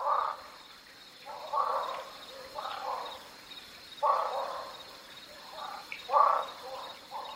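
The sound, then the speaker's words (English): A series of about six short, hoarse calls of a barking frog (Craugaster augusti) repeats at uneven intervals, moderately loud, over a steady faint hiss with no talking; recorded at Lost Maples State Natural Area in the Texas Hill Country. “That's Craugaster augusti, the barking frog of the hill country.”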